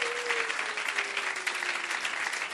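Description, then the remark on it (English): Sustained applause from a large crowd at a church service, dense and steady hand clapping filling the space for a few seconds, with a faint held tone running underneath; the clapping honours the pastors' wives, including the senior pastor's wife. “The wives are very special to us, so you need to clap very well.”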